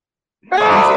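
After a moment of silence, a man suddenly lets out a loud, sustained scream that holds a strained, steady pitch to the end.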